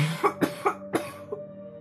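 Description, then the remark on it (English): A quick run of several dry coughs, roughly four close together, then a softer one after a pause, moderately loud with no talking; the coughing comes from people just out of COVID. “Everybody's still coughing.”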